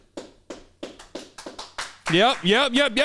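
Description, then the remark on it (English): About seven slow, evenly spaced hand claps ring out, then a loud, wavering voice breaks into whooping cheers, like a small mock round of applause from a studio audience. “I was looking forward to the round of applause from the studio audience here.”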